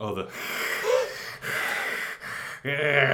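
Heavy, muffled breathing of wrestler Kane through his hood during a wrestling match, several loud inhales and exhales in a steady, labored rhythm with short gaps between them.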